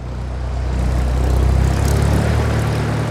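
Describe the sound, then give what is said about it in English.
A propeller airplane engine drones steadily as the plane climbs to 10,500 feet carrying a skydiver up for a jump, a loud, continuous low hum with a throbbing rhythm that stays even throughout, with no voices. “The climb to 10,500 feet wasn't as bad as he thought it would be.”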